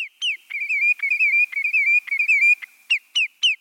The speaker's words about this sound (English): Now, picture this bird in its nesting territory in Alaska, sitting atop a spruce tree. That's right, a sandpiper perched at the top of a tree like our backyard robins, singing its caroling song.